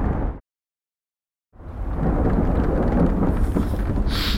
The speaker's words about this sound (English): God, this storm is really bad.